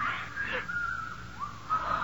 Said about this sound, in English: There's that whistling again.